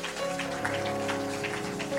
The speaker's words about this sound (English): If you believe it, clap your hands.